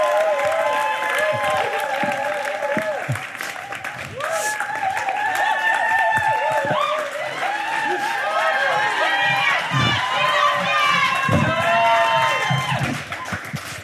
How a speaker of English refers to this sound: So please give her a massive round of applause.